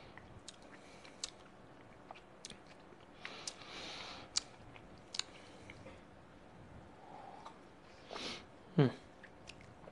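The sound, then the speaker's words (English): Wet chewing of a chocolate bar together with bourbon, with soft squishy mouth sounds and occasional small clicks, steady for several seconds with a louder slurp near the end. “So what I like to do is I'm actually eating the chocolate bar and adding some bourbon, kind of chewing it together.”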